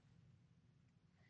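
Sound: sneeze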